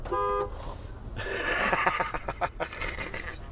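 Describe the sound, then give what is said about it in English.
A car horn is honked at a man to startle him: one short, loud honk, then a rough, pulsing mix of vehicle noise that lasts a few seconds. “Come on, honk the horn on him.”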